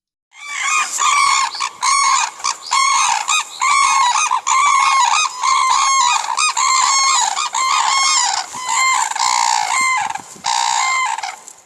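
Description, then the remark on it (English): Four red-crowned cranes, two males and two females, call together in loud, overlapping bugling honks, a dense unison chorus lasting about ten seconds, continuous with no talking. “But just for the sake of completeness, let's listen to four birds all sort of singing together in unison.”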